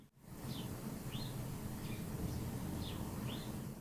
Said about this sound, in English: Well, those birds were trying to. Trying to get on the pod.